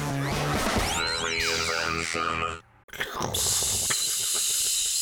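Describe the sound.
After a busy musical jingle with swooping tones, a voice makes a loud, breathy rushing hiss for about two seconds, imitating a toilet flush.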